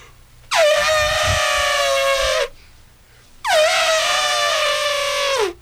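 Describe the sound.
A person imitates an elephant trumpeting with two loud, brassy blasts, each lasting about two seconds with a short pause between. The pitch swoops at the start and then holds steady.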